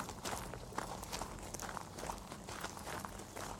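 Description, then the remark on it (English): Steady footsteps walking at an even pace, each step a soft crunching thud repeating roughly every half second, with no voices over them. “Are we going to walk on the road back to the car?”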